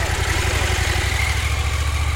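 A motorcycle engine idles, its low, steady chugging pulse running evenly and fairly loud throughout, with no voices.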